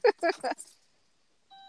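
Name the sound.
electronic beeping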